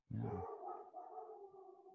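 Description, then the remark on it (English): A dog gives a sharp bark that stretches into a sustained, wavering howl, fairly loud, with no talking. “Dogs here.”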